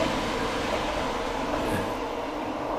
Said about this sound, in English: and there's the train.